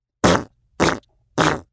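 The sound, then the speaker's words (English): Three short, loud farts in a steady rhythm, each a brief buzzy burst with a pause between, with no talking, caused by eating too many snacks such as potato chips, cookies and gummy worms. “continued to fart”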